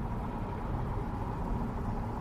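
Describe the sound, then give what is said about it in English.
Steady, low road rumble from inside a Chevy Bolt electric car cruising at highway speed on a highway, with a constant hum of tyres and wind, the air conditioning off, and no engine revving or voices. “I'm pretty sure the battery gets charged by the rotation of the wheels, and I'm on a highway.”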